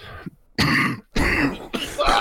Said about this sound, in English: Cough, cough, fuck.